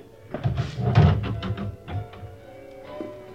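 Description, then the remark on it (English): A phone booth door is pulled shut with a quick series of rattling thumps and clatters, followed by a faint ringing hum as the noise settles. No one speaks. “I'd rather you leave the door open, if you will.”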